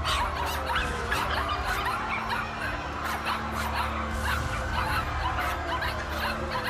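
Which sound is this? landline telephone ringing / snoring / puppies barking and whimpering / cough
puppies barking and whimpering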